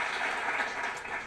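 crowd, applause

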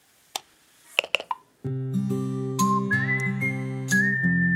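machine, whistling

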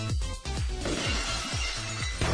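sound effect, glass shattering sound effect

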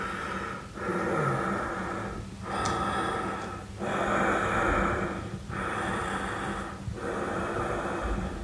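sound effect, labored breathing

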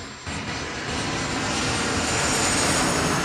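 vehicle, airplane flying overhead

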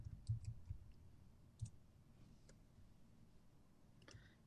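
household object, typing on a keyboard

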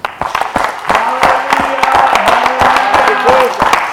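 crowd, audience clapping hands

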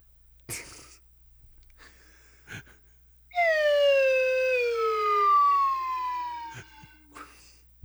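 slide whistle

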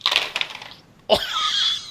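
household object, rolling dice

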